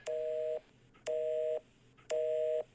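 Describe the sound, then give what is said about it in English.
A telephone busy tone from a phone left off the hook beeps three times in a steady on-off rhythm, each half-second electronic burst followed by a short silence. It is clear, with no talking. “Oh, no. I didn't hang the phone up.”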